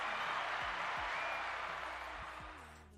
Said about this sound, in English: Good news today. We have a new letter that came in. Let's clap that up. Interesting letter.